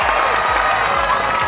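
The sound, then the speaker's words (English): A loud, boisterous crowd cheering and applauding at the Lawn Bowls at the Broadbeach Bowls Club as the world champion Australian fours take gold from the former Commonwealth champion South Africans; a steady dense roar of clapping and shouts with a few low thumps underneath. “Where a loud and boisterous crowd got to witness the world champion Australian fours take gold from the former Commonwealth champion South Africans in a seesawing”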